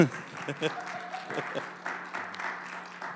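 A crowd claps warmly, a dense, steady patter of many hands with a low, sustained hum running beneath it, sounding moderately loud throughout.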